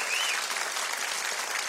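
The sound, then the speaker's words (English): An audience applauds the show's band, steadily, a dense wash of clapping at an even, sustained level with a brief high whistle near the start. “Give them a very well-deserved hand of applause.”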